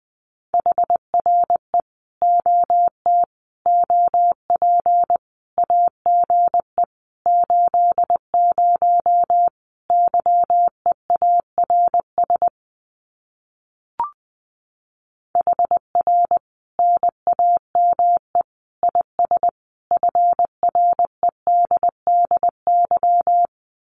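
Morse code at about 20 words per minute sending common QSO phrases: a single mid-pitched tone keyed in brisk dots and dashes, steady and clear, with a short silent break and a faint click midway.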